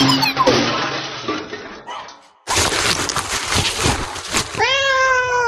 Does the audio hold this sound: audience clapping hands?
no